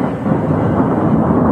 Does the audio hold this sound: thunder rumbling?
yes